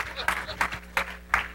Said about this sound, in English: And I think you kids ought to give your parents a hand clap of appreciation. Thank you, all three of you.